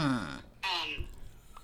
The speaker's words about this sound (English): Sorry, I had a throat burp.